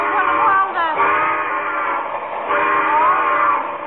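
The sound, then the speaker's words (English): A train makes an emergency stop, grinding to a halt with a loud, sustained metallic screech of brakes, its shrill, wavering tones holding steady for several seconds before easing slightly at the end. “Well, in an emergency like this, we can make a stop.”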